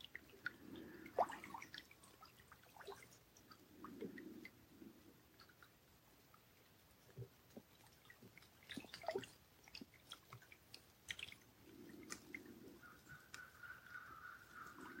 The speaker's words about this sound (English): And I'm sitting by the shores of Kichigami, Lake Superior. It's a gentle rain. Gray skies, quiet Sunday morning.